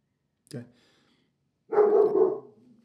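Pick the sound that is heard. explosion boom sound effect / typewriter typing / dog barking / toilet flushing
dog barking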